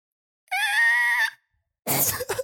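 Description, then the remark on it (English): A voice mimics a truck's brakes screeching as it slams to a stop on a dirt road: a sustained, high-pitched squeal lasting under a second, followed after a pause by a short, harsh breathy burst. Fairly loud, with no other talk. “We start waving at them and then they come to a screeching stop. Like, I kid you not, they slam on the brakes.”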